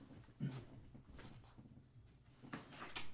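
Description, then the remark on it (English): A door is pushed shut, with a few soft knocks and rattles of the handle and frame over a few seconds, fairly quiet, with no talking. “Let me close this door.”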